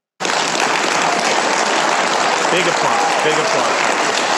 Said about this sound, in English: Big applause.